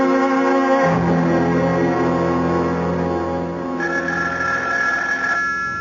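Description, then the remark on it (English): A telephone bell rings steadily and loudly, its bright metallic trill continuing without pause across the whole stretch with no voices. “Do something about that confounded phone. I can't, Mama. It'll just keep ringing.”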